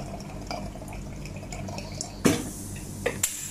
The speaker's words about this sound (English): What you can hear is the sound of a mechanical circular wheel which holds a glove while a water pump fills the latex item. Water bubbles out of the holes in the glove and into a funnel below.